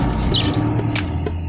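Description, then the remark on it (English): Several short, high bird chirps flit over a steady, bass-heavy music beat, scattered irregularly through the loop at a moderate level. “It was like, oh, they put birds in it now.”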